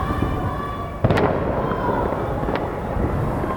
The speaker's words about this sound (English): It was the eve of Revolution Day, marking the anniversary of the 1979 revolution, and the regime was kicking things off with a fireworks display.